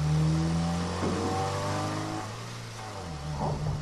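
A car engine revs loudly, its pitch climbing and then falling as the vehicle pulls away and drives off. The drone stays steady and prominent throughout, with no voices.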